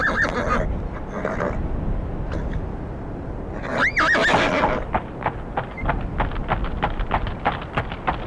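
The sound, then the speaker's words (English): A horse lets out a loud, wavering whinny near the middle, followed by a steady run of hooves clopping on a hard surface as horses are brought into a paddock, with faint rustling and bustle throughout. “Let's get those horses inside the paddock and try and get inside unnoticed.”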